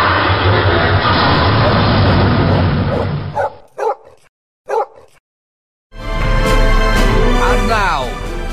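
A loud fighter jet roars overhead, cuts out for a few sharp dog barks in near silence, then the thunderous engine noise surges back in and sweeps past.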